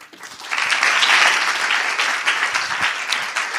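An audience claps steadily for several seconds to welcome the next speaker, a dense, bright patter of many hands that rises quickly, holds at full strength, then gradually thins toward the end. No voices are heard.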